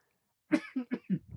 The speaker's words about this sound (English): No, this cough just doesn't want to go away. Like, that's always the thing that hangs on after a cold is the cough. And it's always the worst.